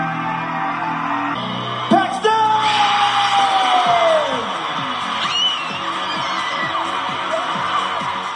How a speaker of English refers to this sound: Did you hear her screams? She was so excited.